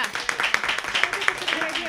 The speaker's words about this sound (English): I think it's a great idea. You're I'm just clapping. Saying that.